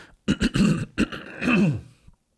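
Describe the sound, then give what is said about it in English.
Someone clears their throat: a few quick rasping bursts, then a longer, rumbling guttural rasp that trails off, fairly loud with no speech around it. “A normal person that cared about his work would have edited out that throat clear.”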